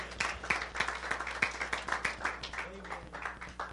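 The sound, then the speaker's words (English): A single person claps in a steady, fairly quick rhythm, a dozen or so sharp claps in a row, with faint voices murmuring underneath. “Go ahead and clap. We got one clapper in here.”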